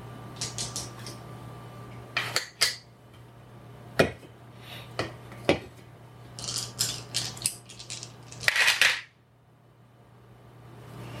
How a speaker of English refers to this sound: Alatar is grabbing dice.